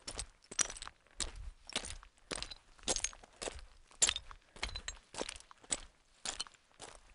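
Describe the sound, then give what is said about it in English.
Crunching footsteps on loose, brittle talus slopes on the way up Telescope, a steady walking rhythm of sharp clinking scrapes like treading over shattered ceramic, fairly loud with no voices. “Our footsteps on the teleslopes on the way up telescope sounded like walking on shattered ceramic.”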